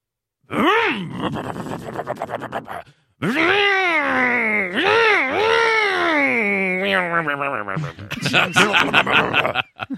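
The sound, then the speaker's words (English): A voice imitates the engine of a classic 1960s American muscle car revving, loud, with growling, pitch-swooping revs in bursts, a brief pause, then a long rumbling run ending in choppy sputters. “What about a more of a classic 1960s American muscle car?”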